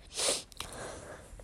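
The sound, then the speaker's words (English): One harsh, breathy cough bursts out loud and hissy, then fades into a few seconds of soft rustling and low background noise, with no talking. “Excuse the cough.”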